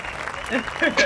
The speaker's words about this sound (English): We need like an applause, like I know. Like something. Sound effect.